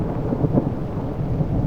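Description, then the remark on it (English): Heavy rain pours down in a steady, dense roar with a deep low rumble beneath it, loud, with no voices present. “The rain started to fall harder.”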